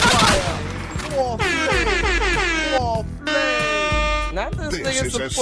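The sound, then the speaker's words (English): Bursts of rapid gunfire crack through a loud, dense mix, tangled with blaring, sliding horn-like tones that swoop up and down and fill the whole stretch without pause. “Gunshots. More gunshots.”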